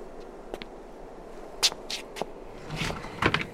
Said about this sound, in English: He reaches the bottom, and there's a door right at the end of this stairwell. We see Mahira watching from a distance from the top of the stairs. And Raja knocks on the door.